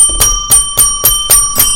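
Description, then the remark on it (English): Jingle bells shaken in a steady rhythm, six bright jangling bursts about a quarter second apart, with a faint metallic ring hanging between them. Fairly loud, no voices. “Oh, that sounds like jingle bells.”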